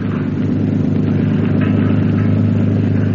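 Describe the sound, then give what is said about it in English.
A steady, droning motorboat engine runs continuously as the boat heads out to sea at night, a low harmonic hum with a slight rhythmic throb, with no voices. “moon and stars, Turk steers the motorcraft out to sea.”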